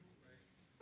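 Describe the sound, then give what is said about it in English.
A single abrupt sneeze bursts out at the very end, loud and breathy, after a short stretch of quiet room murmur. “Bless you.”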